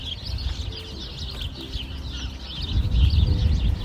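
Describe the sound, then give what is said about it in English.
A dense chorus of many small birds chirps and twitters continuously from a single bush beside a cycle path, high-pitched calls overlapping throughout, with a low outdoor rumble underneath that grows louder toward the end. “There's loads of birds in that bush.”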